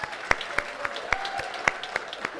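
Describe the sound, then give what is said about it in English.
A group claps together in a steady, loosely synchronized rhythm, with sharp, bright hand claps landing about four times a second over a low background murmur, clapping as an all-in-favor vote on a baptism motion. No one speaks. “All in favor, big clap, yay.”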